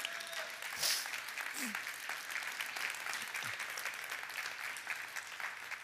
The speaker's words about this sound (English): If you believe that, I wish you'd clap your hands.